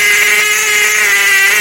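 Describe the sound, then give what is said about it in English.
A turkey hen long call made on a turkey call at its loudest while holding pressure, blown as one long, loud, steady note with a buzzy, raspy edge, holding its pitch without a break for under two seconds. “So you want to be able just to pick a call up and make your loudest hen long”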